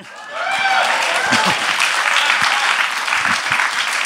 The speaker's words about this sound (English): Yes, it's worth some applause.